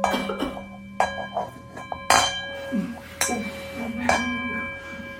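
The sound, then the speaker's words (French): A bell is struck about five times at uneven intervals, each sharp metallic hit followed by a sustained, shimmering ring that overlaps the next, with faint murmuring underneath. “Notez que c'est impossible de ne pas reconnaître que c'est une cloche.”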